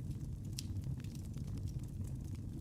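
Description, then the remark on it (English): A fireplace crackles steadily over a low, warm rumble, with scattered soft pops and snaps, one sharper crack early on. Quiet, continuous ambience with no voices. “I think you might have been confusing the fireplace ambiance with the buttons.”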